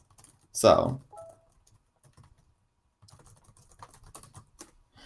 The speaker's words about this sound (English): if you hear me typing, I am typing to some friends, getting them involved.